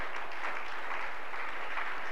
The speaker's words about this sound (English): Oh, it's worth a clap. Yeah.